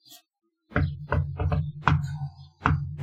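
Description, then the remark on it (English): A special rhythmic knock on a door: about six solid raps in an uneven pattern, with a quick pair in the middle and a final knock after a pause, with no voices. “When you come back down here and there's somebody waiting, the knock we're going to do is just...”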